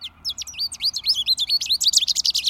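Finches singing over a sidewalk: a rapid, bright warble of twittering chirps and trills, dense and continuous, growing busier toward the end, with no voices.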